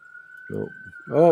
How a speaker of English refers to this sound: Another ambulance. This is the third one within 3 hours.